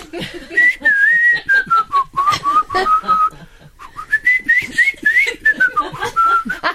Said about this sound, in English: Did you used to whistle them in long, elaborate, yeah, rambling just whistling? Freestyle. Yeah.